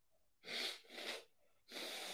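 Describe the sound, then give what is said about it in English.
A person blows their nose into a tissue in three loud, breathy, honking bursts, with short pauses between them and no talking. “Let me blow my nose again.”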